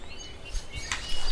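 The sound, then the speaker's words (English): Several short bird chirps flicker over a soft, steady outdoor ambience in a dense, wooded pine forest, fairly quiet, with no one talking. “It's a dense forest, and the smell of pine is thick and very strong. Birds are chirping”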